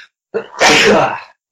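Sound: sneeze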